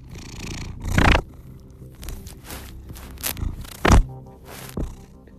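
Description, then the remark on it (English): Steady purring from contented cats, a soft continuous rumble broken by a few brief thumps and scraping noises. No one speaks. “It's just so great to see the cats again. As you can hear, the cats are very content.”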